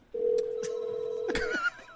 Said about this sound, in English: Hey, that's weird. Oh, let's mute that. I could have sworn I heard a phone. That's weird.